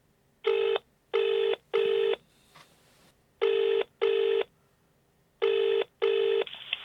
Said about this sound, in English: So I've come into my office here at South Mimms to call him up on the phone, which is what I'm going to do right now.